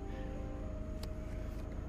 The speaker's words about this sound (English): I have this car coming my way, so I'm waiting for them to pass by.